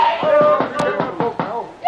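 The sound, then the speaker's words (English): A rapid series of firm knocks on a cabin door aboard a ship hit by a torpedo, about seven raps in quick, steady rhythm, waking a sleeping passenger while voices call out over them. “Oh, who's there? Open the door!”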